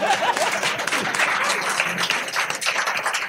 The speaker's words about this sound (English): Applause, yeah.